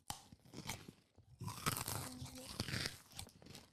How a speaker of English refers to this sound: Anyway, let's open the chocolate. Just take a big bite, boss man. Nice. I'm going to take a bite.